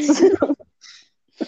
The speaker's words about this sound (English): Like I just constantly have to clear my throat. It's really bad. I mean, you gotta do something with that throat. It's especially bad when I laugh really hard and then I just suddenly have the urge to clear my throat every 2 seconds.